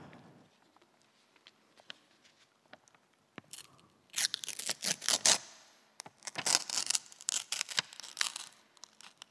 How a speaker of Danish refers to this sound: Altså, jeg arvede mine søsters noder, og jeg fandt ud af, at når jeg rev nodearkene i stykker, så kunne jeg høre, hvilken komponist det var. Noderne lavede små bump på papiret, som jeg kunne høre, når jeg lyttede godt efter.